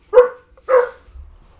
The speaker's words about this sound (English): Uh-oh. Sorry about that. That's all right. I didn't even know you had a dog. My dog.